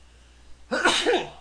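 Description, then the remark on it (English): A single sneeze bursts out after a brief stretch of near-silence, fairly loud, with a sharp, breathy explosion that trails off quickly. No one is talking. “Bless you. Wait, one more.”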